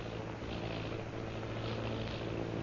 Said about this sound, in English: Sounding like airplane. Airplane?